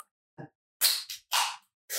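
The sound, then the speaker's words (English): Drink cans are cracked open one after another: a soft click, then two loud sharp pops, each trailing into a bright fizzing hiss, with a third starting at the end. No one speaks. “We're going to start this episode with a crack. A couple cracks.”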